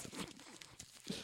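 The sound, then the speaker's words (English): A crackling fire sound effect: irregular bursts of dry crackles and sharp pops, with a couple of louder snaps standing out. No one speaks. “The crackling of the fire.”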